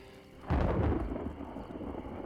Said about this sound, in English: heart sank when she heard thunder. It sounded dangerously close.